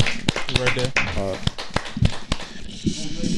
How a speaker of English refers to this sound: Put it down and clap. Clap it up. Don't worry about what I'm doing. I'm the one who said clap it up. So that's my clap.